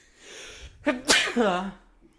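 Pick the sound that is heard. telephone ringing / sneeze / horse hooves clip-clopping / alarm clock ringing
sneeze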